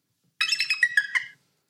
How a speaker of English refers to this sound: Is that an eagle? Is that a baby eagle? Budgie? There must be a better eagle. Can budgies go that high? That is an eagle, right? Like I've downloaded an animal sound. It's not an eagle. I'm sure you did download it, but it's not an eagle.